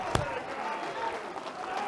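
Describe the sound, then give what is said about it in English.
An audience claps hands together in a steady, dense wash of applause, opening with one sharp, loud clap, while voices carry on underneath throughout. “Clap your hands.”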